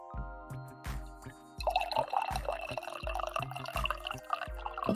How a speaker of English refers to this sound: All right. That was a better coffee pour. That was a better coffee pour here.